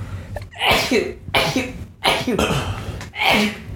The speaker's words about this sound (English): I'm about to sneeze.